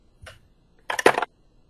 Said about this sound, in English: I got a nat 20! These dice like me.